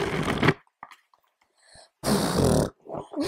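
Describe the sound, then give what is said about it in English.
A book makes two loud, rough bursts of flapping pages, one at the start and one past the middle, with soft rustling and handling noises in between. “Okay, so my next sound is wait. It's a book.”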